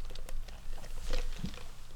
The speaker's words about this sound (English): Had to take a little sip of my lemonade.